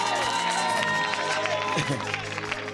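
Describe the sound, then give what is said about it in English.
A crowd applauds and cheers loudly, with clapping and raised voices blending into a dense, continuous wash of sound that holds steady for a few seconds. “I thought it's a good place to clap.”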